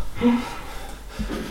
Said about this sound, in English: He moves away from the mic to blow his nose.